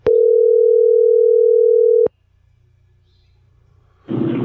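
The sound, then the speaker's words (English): A telephone ringback tone on an outgoing call: one steady, loud electronic tone lasting about two seconds, then a quiet line with faint hum, ending in a short burst of rushing noise. “Nobody answers their phones anymore. Everybody screens.”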